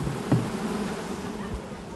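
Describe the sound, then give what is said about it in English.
A steady, dense buzzing of many worker honeybees flying in and out of a hive close by while a beekeeper smokes them, a continuous hum with a brief louder burst near the start and a faint low rumble beneath. “Those busy worker bees flew in and out of the hive, seemingly unbothered by our close proximity.”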